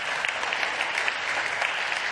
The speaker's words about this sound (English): The first service clapped a little more enthusiastically, so maybe you're right. Maybe the first service did go better than the second.